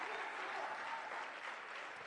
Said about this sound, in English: I need somebody to clap their hands this morning and shout and give God some praise. I need somebody to really praise the Lord this morning because of the blood.